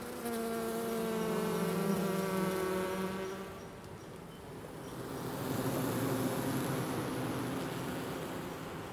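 Steady buzzing of honeybees during a hive inspection at Aspen Ridge Greenhouses, a droning hum that briefly softens midway, then swells again as many bees swarm, with no voices.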